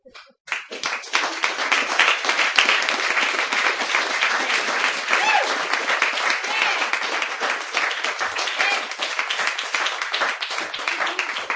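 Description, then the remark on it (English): Sustained audience applause, one more round for a performer, a dense steady wash of many hands clapping that begins abruptly and holds at a fairly even, loud level for about eleven seconds. “ladies and gentlemen, one more round of applause.”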